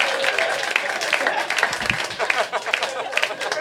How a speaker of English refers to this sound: I think you were quick to applaud at that.